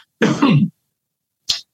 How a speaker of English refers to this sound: I think Ange just left me his cough.